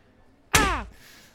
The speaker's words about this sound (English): just slapped me across the face.